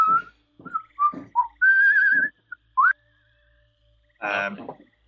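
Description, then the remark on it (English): Someone whistles in imitation of the recorder of Hummel, a role-playing game character trying to find the right note to cast cure wounds, playing a string of short notes that hop between pitches, then a longer wavering tone and a quick upward slide, ending with a buzzy, breathy burst. “Hummel will get out his recorder, and he'll start pitching some notes”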